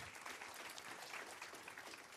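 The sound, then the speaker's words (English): A crowd at a service claps steadily for a woman called up front, the dense patter of many hands filling the whole stretch at an even, moderate level with no voices standing out. “So y'all give Megan a hand clap.”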